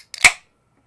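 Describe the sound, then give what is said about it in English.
A large can of Dale's Pale Ale beer is cracked open: a quick metallic snap followed by a brief, bright fizzing hiss that fades within a fraction of a second, with no talking. “I think you heard it. That was a snap, crackle, and pop.”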